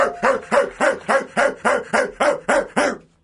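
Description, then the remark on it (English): A person imitates a dog barking: about ten quick, evenly spaced woofs in a steady rhythm, loud, with nothing else around them. “I said when you were out of the room, I said I should have really not barked when you were in the hallway.”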